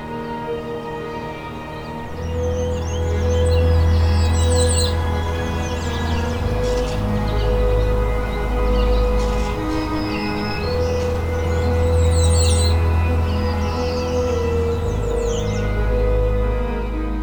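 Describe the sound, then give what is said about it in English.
Several songbirds, migrant warblers and resident breeding birds, sing and chirp in bursts on a morning in Woodland Cemetery in Burlington, Ontario, along the shore of Hamilton Harbour, their high trills layered over a steady low rumble and hum of background noise. “Migrant warblers and resident breeding birds here are filling the air with song.”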